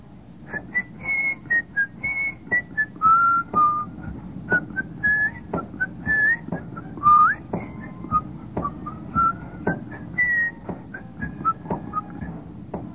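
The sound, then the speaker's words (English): Marching band members whistle a bright, wavering tune together out in hot sunlight, the melody rising and falling in short phrases over steady rhythmic taps and a low background rumble, with no talking. “And they're out there in that hot sunlight whistling, you know.”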